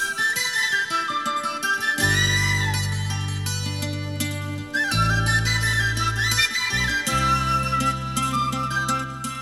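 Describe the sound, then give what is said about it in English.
A lively folk tune with mandolin, flute and penny whistle carrying a bright, lilting melody, joined after a couple of seconds by a full, steady low bass, loud and continuous with no voices. “So yeah, right at the start we have that mandolin, flute, penny whistle, slurry.”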